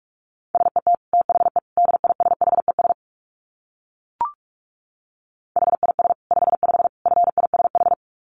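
Rapid Morse code at about 45 words per minute: a steady mid-pitched tone keyed in quick dits and dahs, in two bursts separated by a pause with a single brief click.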